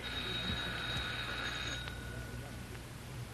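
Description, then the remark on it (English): A doorbell rings in one continuous, bright metallic trill lasting nearly two seconds, then cuts off, leaving only a low steady hum and faint background noise. “Oh, I guess we better ring the bell.”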